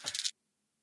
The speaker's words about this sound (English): Come here, you fucking dice. Okay.